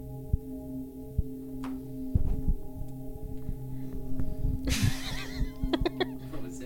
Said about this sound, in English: What was that? Did anyone hear that? Yeah, I did. This Sally, the dog Sally, sounds like a cow most of the time. Man, dog noises are so funny. It's like almost every time I hear her make some weird noise, I like think like that is so cartoonish.